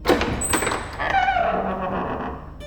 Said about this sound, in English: The guard opened the doors to a dining chamber.